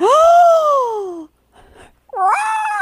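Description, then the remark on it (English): A voice imitates a Godzilla roar with a loud, drawn-out wail that rises then sags, a brief raspy breath, then a second strained, wobbling cry, sounding more like a yowling cat. “This is the worst Godzilla sound ever.”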